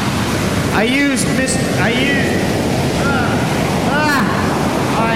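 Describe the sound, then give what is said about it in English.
Steady, loud rush of ocean waves and wind in the middle of the Atlantic Ocean, on a rainy day aboard a boat, with a few brief warbling vocal sounds rising over the constant noise. “And now I am in the middle of the Atlantic Ocean.”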